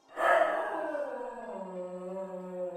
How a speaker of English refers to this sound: Okay. And all of you hear a barking.